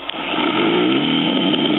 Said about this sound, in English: Is he snoring? No, it's more of a guttural noise. I think he's snoring. No?